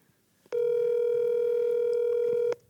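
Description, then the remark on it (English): A phone call ringing: one steady electronic ring tone holds at an even, fairly loud level for about two seconds, then cuts off. No one speaks. “We'll leave a voicemail.”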